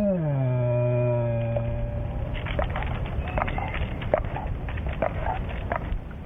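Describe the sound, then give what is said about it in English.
A frightened black bear sitting up in a tree gives a low, drawn-out moan lasting about two seconds, followed by rustling, scattered clicks of teeth clacking together and soft huffing, blowing sounds, with no one speaking. “But it's just their moan of fear. The bear is sitting up in a tree in abject terror.”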